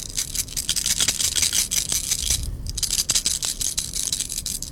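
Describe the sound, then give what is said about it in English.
Skittles candies rattle and clatter as they are shaken in a hand, a dense, continuous patter of tiny clicks lasting several seconds, fairly loud, with no talking. “It was Skittles shaking in my hand.”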